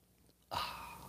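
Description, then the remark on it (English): A single sip of a drink: after a brief quiet pause, an abrupt airy slurp begins and trails off gently. No one speaks. “We're going to top it off with a sip of your favorite beverage.”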